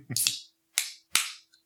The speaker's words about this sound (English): I'm drinking a White Claw. White Claw? I see you have not popped the tab. Would you please do us the honor of doing so?